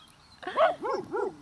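A female guard dog with a lot of Rottweiler in her barks three times in quick succession, sharp, the first bark loudest and the next two slightly softer, with no voices in between.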